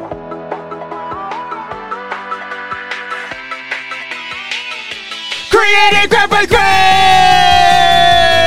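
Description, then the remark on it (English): A rhythmic, pulsing build-up of voices or music breaks into loud, sustained yelling from several people, which holds steady to the end. “Didn't know when I was supposed to yell. You missed it. You missed the yell.”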